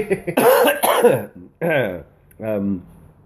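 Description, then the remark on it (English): A person coughs a few times, starting with a harsh, rough burst and followed by two shorter, throatier coughs with brief pauses between them. “hang on. I need a cough mic thing.”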